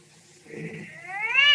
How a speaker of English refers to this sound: And I'm telling you, that cat you got in there is violating the city ordinance.